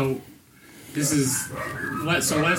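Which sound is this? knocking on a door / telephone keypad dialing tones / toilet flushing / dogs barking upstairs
dogs barking upstairs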